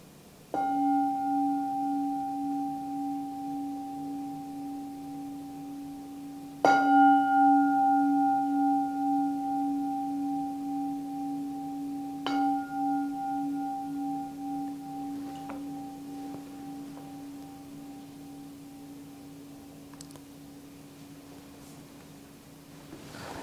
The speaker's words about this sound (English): Okay, so we'll be finishing the meditation. So I'll ring the gong 3 times. So on the last gong, just come out gently and quietly.